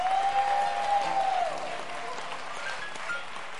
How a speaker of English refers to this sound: You ought to give yourself a hand of praise and applause today.